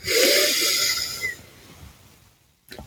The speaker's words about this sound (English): Breathing in.